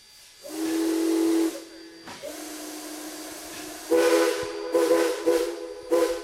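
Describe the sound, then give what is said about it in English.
A steam train whistle sounds in long sustained blasts, first one steady tone, then a second longer blast ending in several short bursts, with broad hissing steam underneath throughout, heard while riding a train with open cars and a caboose. “what are we riding? The train.”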